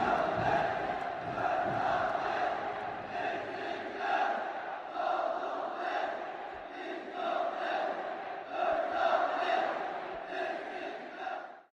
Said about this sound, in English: Right opposite me, there was a man and he was weeping as he cheered and he didn't even stop to wipe his face. Maybe he wasn't allowed to. But watching him, those perfectly coordinated cheers began to sound so sinister.